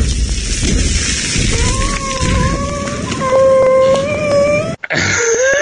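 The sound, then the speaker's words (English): A thin, wavering whine rises over a heavy rumbling, crashing din, cuts off abruptly, then a short, high whimper slides downward in pitch at the very end. “Okay, that little whimper right at the end always owns me.”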